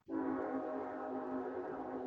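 A single sustained train horn blast sounds right away, loud and steady with a rich harmonic chord, holding for about two seconds without any talking.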